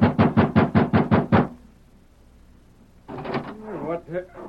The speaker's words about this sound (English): he pounded excitedly at the door of the hotel room where Gus and Deke were staying.